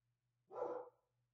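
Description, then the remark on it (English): A dog lets out a single short bark over a faint, steady low hum, with quiet stillness before and after. No one speaks. “There are dogs in the background.”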